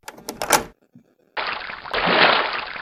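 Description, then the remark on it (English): A few sharp knocking clatters, a short pause, then a sudden heavy splash as someone falls into the deep end of a pool, turning into a steady churning wash of water, loud and continuing to the end. “I wish you hadn't fallen into the deep end”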